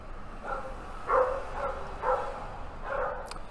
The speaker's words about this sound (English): How many dogs are there? Two. Two? They're in a barking contest? They're barking to people on the street.